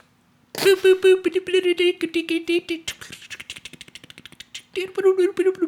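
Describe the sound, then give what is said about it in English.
A voice imitates an old dot matrix printer: a buzzing, pitched hum chopped into rapid rattling clicks, pausing briefly mid-way for a stretch of faster dry ticking before the buzz returns. “That's my printer. It's old. Dot matrix printer.”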